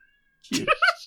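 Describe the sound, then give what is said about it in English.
A seven-month-old kitten lets out a quick string of high, whiny meows, fairly loud, with brief pauses between each cry and no other sounds around it. “It's like a 7-month-old kitten.”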